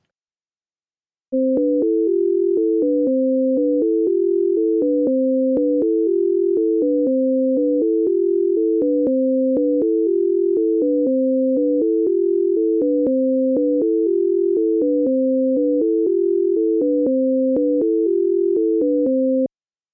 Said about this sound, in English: Next, we have the scale illusion. Listen to it first through headphones with the loudspeakers turned off. Listen to the pattern. If you hear higher tones in one ear and lower tones in the other ear, decide which ear is hearing the higher tones.